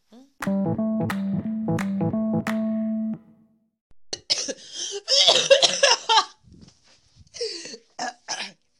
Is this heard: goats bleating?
no